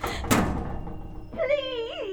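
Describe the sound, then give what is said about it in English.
A door thuds shut once, a heavy impact that rings briefly, then a drawn-out, wavering human cry follows after a short pause. “Please, please don't shut that door.”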